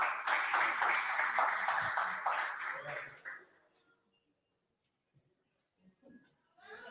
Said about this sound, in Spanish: Iglesia, un aplauso para Dios.